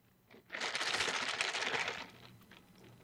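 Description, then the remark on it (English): A loud rattling slurp through a straw lasting about a second and a half, gurgly and crackling as the last sips of drink are sucked up, with no talking over it. “Let me get my last sips out.”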